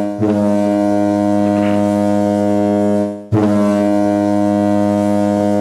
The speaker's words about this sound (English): But those foghorns, you know.